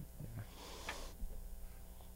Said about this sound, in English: So pick that glass up. You can. I'm trying to sniff as close to the microphone as possible, so everyone can smell it.